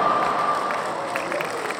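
A canned applause sound effect triggered by pressing an applause button: a steady burst of crowd clapping with some cheering, dense and fairly loud, holding level for about two seconds without fading.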